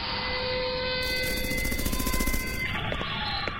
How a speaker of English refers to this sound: We're greeted by muffled blasts from an enclosed firearms range